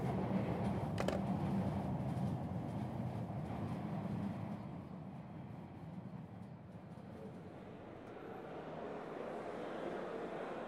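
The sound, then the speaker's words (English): A train rolls along on its rails, a steady low rumble with a brief metallic clack early on, easing slightly midway and continuing without any voices. “For now, though, better get moving to Shamit. Trains are moving slow these days because, you know.”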